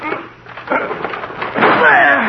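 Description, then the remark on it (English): A locked door is rammed by two people's shoulders: a couple of heavy thuds, then a loud, sustained crash as it gives way, with a voice briefly audible at the end. “Well, we've got to break the door down. Yes. Put your shoulder beside mine.”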